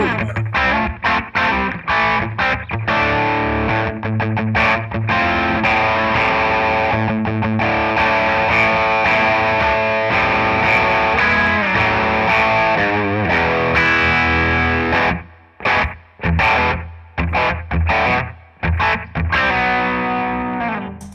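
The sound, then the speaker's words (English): Electric guitar played through a lush digital chorus effect, thick and shimmering with sustained chords, loud, then breaking into choppy staccato stabs with brief gaps near the end. “It's digital chorus, man.”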